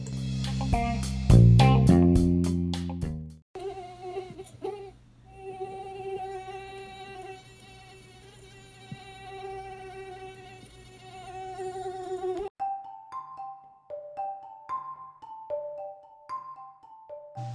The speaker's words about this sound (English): Now that is a torturous noise, isn't it? Haven't you been on the couch at night? You're trying to watch your movie and all of a sudden you hear this buzzing in your ear? This mosquito somehow, someway got their way into your home